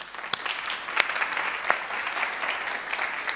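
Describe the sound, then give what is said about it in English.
A crowd applauds the welcome team volunteers steadily, dense overlapping hand claps for a few seconds, with a handful of sharper individual claps standing out. “Can we give them an applause?”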